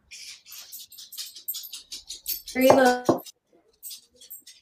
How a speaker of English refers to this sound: Oh, I think you're breaking up. No. Oh, sorry, I think your video is lagging a little bit.